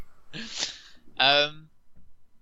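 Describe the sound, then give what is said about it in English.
A single sneeze: a breathy intake and burst followed by a sharp, voiced "choo" that cuts off quickly, then quiet. “Bless you. Thank you.”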